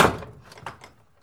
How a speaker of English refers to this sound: The door is partly open. Okay, kick it open. Watch yourself.